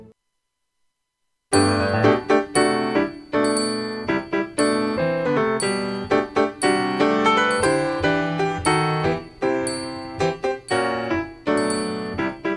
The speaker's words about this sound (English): Boy, that sounds Christmassy. It really does. With the little bells there.